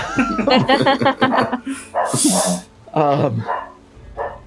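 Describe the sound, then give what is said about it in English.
The speaker's own dog lets out a quick run of sharp, yelping barks, then a breathy snort-like burst, followed by a few more barks trailing off into quieter huffs. “there's my dog doing sound effects for, right.”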